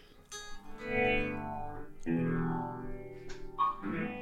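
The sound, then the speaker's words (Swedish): An amplified electric guitar, just plugged in, rings out with a few sustained strummed chords, each struck and left to ring with a processed, effects-laden tone, fairly loud with no voices. “Jag trycker in den här så vi får lite ljud också.”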